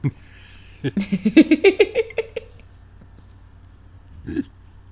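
A big voiced yawn from a woman that rises in pitch, breaking into a quick quavering run of pulses for about a second and a half. A short throaty sound comes later.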